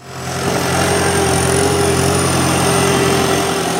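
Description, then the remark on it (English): Snow-clearing heavy machinery engines, including two graders, about four one-ton trucks and a couple of small articulated trackless sidewalk machines, drone steadily at idle at night. A low rumbling hum with a constant mechanical whine on top holds the same loud level throughout, with no talking. “Tonight we've got two graders, we've got probably four one-tons, a couple of what they call trackless, like small articulated machines that can move on the sidewalks, and probably a dozen staff out here.”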